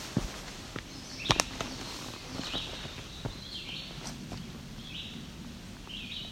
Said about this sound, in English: May have been the chestnut-sided warbler singing again. There we go. It's a chestnut-sided warbler again. He's back to singing.